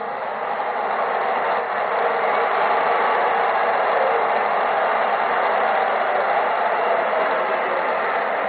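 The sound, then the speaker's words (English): A large crowd at the Class B state championship high school football game between Chesaning and Belding, score 41-38 with 12 seconds left, roars steadily, a loud, continuous wash of cheering and shouting that holds its level throughout with no single voice standing out. “Listen to the crowd.”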